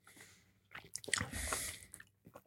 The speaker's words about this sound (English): Let's take a shot. Cheers. Or a sip, right? A sip. Just a sip? Yeah, it's an Italian beverage.